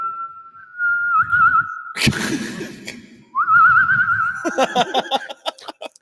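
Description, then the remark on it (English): A person whistles, using the tongue, a sustained steady tone that warbles slightly, breaks off, then starts again with a wavering trill that turns into rapid chirpy fluttering notes, fairly loud. “It's my penis whistle.”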